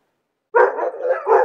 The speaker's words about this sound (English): There's two dogs for you, Doggy. Why don't you introduce yourself? Why don't you give him a little bark or two, huh?